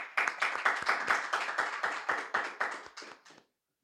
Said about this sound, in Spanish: ¿Podemos dar palmas al Señor, hermanos, por eso?